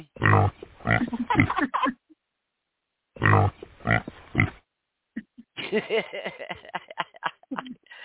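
Someone imitates a pig, making loud snorting oinks and grunts in three bursts separated by short silences, with the last stretch longer and more drawn out.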